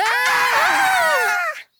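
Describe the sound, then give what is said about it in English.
Several high-pitched girls' voices shriek together in a sudden, loud burst of surprised screaming as they are suddenly charged, overlapping for about a second and a half before cutting off abruptly. “Jack is suddenly charging them. The girls, totally unprepared, scream.”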